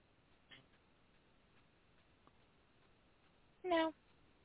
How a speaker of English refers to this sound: That sounded like a meow. I said a meow.